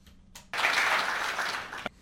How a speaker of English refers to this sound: God damn it, some long-ass applause.